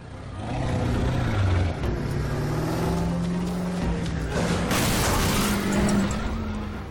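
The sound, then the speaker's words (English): Humvee engines rev loudly, their pitch rising and falling, before a heavy crash of metal bursts through partway in and the engines keep roaring, as Humvees are wrecked during the filming of a movie. “Those Humvees are really crappy. I mean, we destroyed so many Hummers on this movie.”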